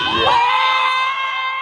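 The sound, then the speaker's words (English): A crowd screeches and cheers at a lightsaber fight show at Batuu in a loud, continuous burst of high-pitched shrieks and yells, sustained at full volume with no pauses. “Oh god, people screeching like retards.”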